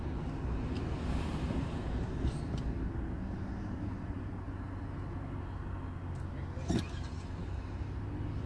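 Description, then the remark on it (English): A steady low rumble of light car traffic fills a Lowe's store parking lot at dusk, with wind buffeting the microphone and a brief sharp knock near the end; no voices stand out. “Not too much traffic in the Lowe's.”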